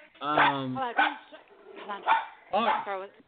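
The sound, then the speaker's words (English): Several pet dogs bark excitedly in quick, overlapping bursts, fairly loud, with yips and whiny harmonics mixed in over a few seconds. “Sorry, my dogs are going crazy here.”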